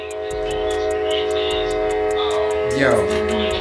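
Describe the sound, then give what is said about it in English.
A train rumbles past loudly and steadily, its horn blowing continuously, with a sustained tonal drone and a fast, even clatter throughout, while a voice is faintly buried underneath near the end. “the train is violating you right now. We can't hear you at all.”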